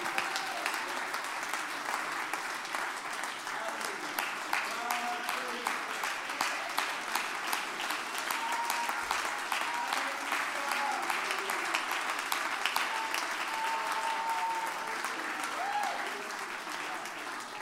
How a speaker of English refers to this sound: Give the Lord a great hand clap of praise this morning. And lift your voice with that hand clap and let's worship the Lord.